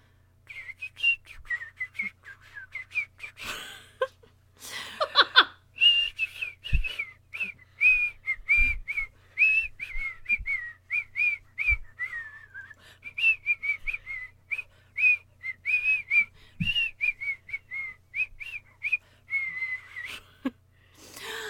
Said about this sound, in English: this is where, if you're not familiar with the segment, I whistle a tune.